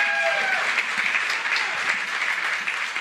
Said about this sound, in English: The crowd for Oklahoma, those fans, had as big of an impact on a football team as I've ever seen. Ever. The crowd deserves some dang credit. Give yourself a round of applause, guys.